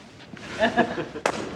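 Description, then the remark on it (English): Glass is smashed underfoot at a wedding: a single sharp, bright crunch that stands out loudly after a brief murmur of voices, with a short rattling tail. “breaks the glass to shout out Mazel Tov”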